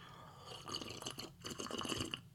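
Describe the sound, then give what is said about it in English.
Quiet wet sipping and slurping of sherry from a glass, a couple of soft bursts of liquid noise over about two seconds, with no talking. “We're going to work on this, but I'm going to have a sip of sherry first.”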